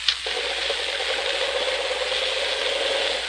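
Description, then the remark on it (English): A Cyclone radial aircraft engine runs steadily in a test cell, giving a continuous, fairly loud mechanical roar with a fine rattling, ratchet-like texture that holds even throughout, with no voices. “Hey, that one's certainly ticking.”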